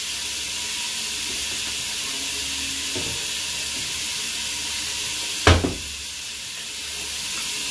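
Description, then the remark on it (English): Steady rushing water runs throughout as a few dishes are washed, with a soft knock around the middle and one sharp, loud clatter of a dish near the end. Nobody speaks. “Only have a few to wash, so bear with me.”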